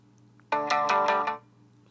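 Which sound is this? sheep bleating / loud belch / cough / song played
song played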